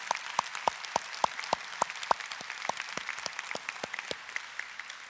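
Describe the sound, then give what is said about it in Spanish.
A church audience breaks into steady applause in thanks to God for salvation through Jesus Christ, a few hands clapping in a crisp, regular rhythm over a dense wash of crowd clapping that carries on evenly throughout. “Y no merece eso un aplauso, digo, porque increíble que Dios...”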